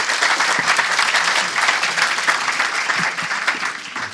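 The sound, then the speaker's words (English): An audience applauds guests steadily, a dense wash of many hands clapping at once, loud and sustained for the whole stretch with no voices standing out. “So give these guys a round of applause.”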